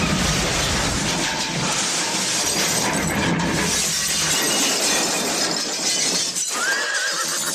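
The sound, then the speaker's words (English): A galloping horse smashes through a living room wall in a long, loud crash of shattering glass and tumbling debris, with a high whinny rising near the end as the wreckage settles. “Be the envy of your neighbours as your horse gallops straight through their living room wall, fueled by premium horse corn.”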